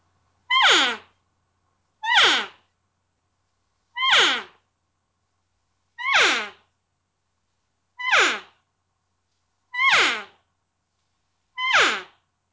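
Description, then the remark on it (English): An external open-reed elk call, its paint worn off to white, is blown seven times in a steady rhythm, each note a short, high, nasal mew that slides sharply downward in pitch, with brief silences between. No one speaks. “but it sounds to me, it's my number one call as far as external read, open read. And yeah, blow it.”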